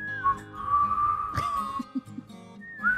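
A person whistles a steady, sustained tone that rises and falls slightly, close and clear, with a brief sharp knock partway through and a short rising whistle at the end. No one speaks.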